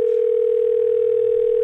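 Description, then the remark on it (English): A steady, loud telephone ringing tone on an outgoing call hums without a break for nearly two seconds, a single clear electronic pitch heard on its own with no voices. “Who are you ringing?”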